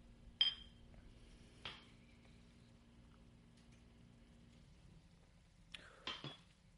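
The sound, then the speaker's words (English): Glasses clink together in a toast over shots, one bright ringing chink followed by a softer knock, then a quiet pause before a quick cluster of glassy taps and knocks. No talking. “Still burns every time.”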